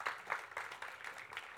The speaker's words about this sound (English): Let's give you guys a round of applause. You guys, our church did an amazing job.